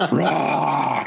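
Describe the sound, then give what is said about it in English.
A person growls like a lion, a single rough, rumbling snarl held for about a second, loud with a gravelly, throaty texture. “Just picture Simba from Lion King, just like this. Exactly. Yeah, that's exactly. Hyenas. And here comes Mufasa.”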